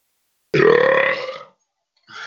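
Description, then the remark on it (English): A loud, drawn-out burp after chugging a couple of sips of Dr Pepper, lasting about a second, deep and croaky with a rough, buzzing tone that fades out, followed by a brief pause and the onset of another short burp. “You chug down a couple of sips of Dr. Pepper. That does that to you.”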